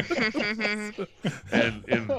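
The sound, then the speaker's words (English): A voice makes a string of short, voiced cough-like bursts, several in a row with brief gaps, fairly loud, imitating the character Dovked coughing in agreement rather than speaking. “and Dovked is coughing and agreeing the whole time.”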